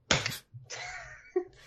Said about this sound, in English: High five.